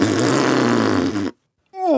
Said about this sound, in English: belched impressively.